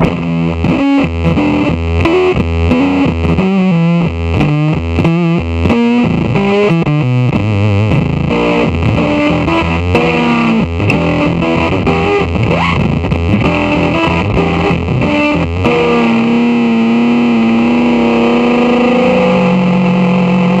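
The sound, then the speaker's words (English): A loud, heavily fuzzed electric guitar played through a fuzz pedal plays a busy run of notes, then swells into a sustained, saturated, exploding tone that sputters and blooms with harsh distortion. No one speaks. “I've got some wonderful other Fuzz Face type things that people have, like, made for me and, like, tried to clone that. But it's just, like, this thing does, like, an exploding thing.”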